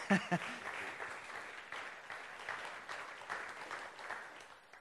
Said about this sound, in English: Why don't we give Stephen a round of applause?